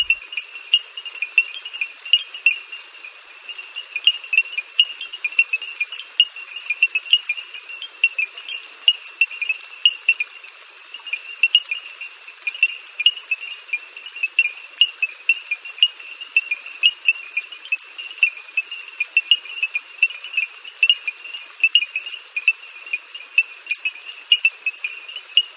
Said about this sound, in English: small frogs create a sound similar to African stone xylophones. Who knew? Bernard Fort found shelter from the storm under a small wooden bridge where he recorded this evening chorus.